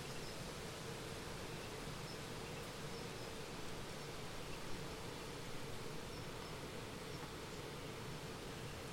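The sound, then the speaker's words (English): A native mud dauber wasp's low, groggy drone hums steadily for the whole stretch, a continuous buzzing with no pauses and no voices, as it flies slowly and stutteringly around a train carriage. “Upon entry, it makes a low, groggy drone, like a slightly unreliable engine in a tiny aeroplane.”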